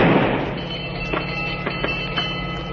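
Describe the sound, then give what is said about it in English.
A single blank warning shot bursts out at the start, a loud low boom that trails off into a steady rumbling hum, with a few faint clicks afterward and no voices. “That was a blank, a warning.”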